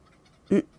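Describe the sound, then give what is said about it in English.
A single short, loud chicken cluck in a chicken coop, a brief throaty call over faint background noise, with no other sounds and no talking. “How is the chicken coop?”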